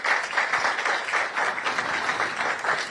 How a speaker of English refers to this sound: They deserve a round of applause, please.